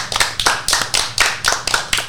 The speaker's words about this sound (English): So this is Paul. Let's give Paul a round of applause.